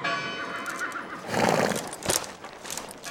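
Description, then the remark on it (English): A horse hitched to a post outside a saloon in a dusty town at high noon whinnies loudly, a shrill rising neigh that shudders and fades over a few seconds, with faint hoof clops in the background. “Cowboys have hitched their horses to some posts outside a saloon.”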